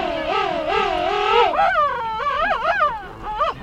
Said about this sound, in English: A pair of king penguins stands face to face. They tilt their heads back, point their long bills skyward, and trumpet in unison. Second largest of all penguins, king penguins stand nearly 3 feet tall.